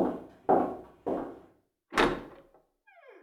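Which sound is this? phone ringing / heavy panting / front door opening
front door opening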